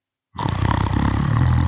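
After a brief silence, an inserted snoring noise, given as a one-line review of the film The Man in the Gray Flannel Suit: a loud, low, rasping snore rumbles in and holds steadily for over a second, gravelly and throaty, with no voices.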